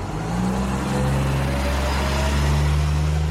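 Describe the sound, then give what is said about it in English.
A city bus on route 28 pulls away, its heavy diesel engine rumbling loudly and steadily, the low drone rising slightly in pitch as it gathers speed. No one speaks. “The 28 pulls away.”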